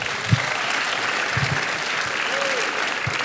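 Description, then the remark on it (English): An audience claps steadily for a woman about to speak, a dense, continuous wash of applause that holds at an even level for a few seconds, with a few scattered whoops and murmurs mixed in. “So give her a big round of applause real quick.”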